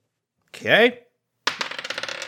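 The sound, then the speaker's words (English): A short vocal exclamation, then a loose clatter of dice tumbling and rattling across a hard surface in quick, irregular clicks, fairly loud, as the lowest die is re-rolled. “And re-roll that lowest dice.”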